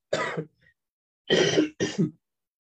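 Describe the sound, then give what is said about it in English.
Three raspy coughs: one on its own, then after a short pause a quick pair in succession, loud with nothing else around them. “And I cough because I'm not sure.”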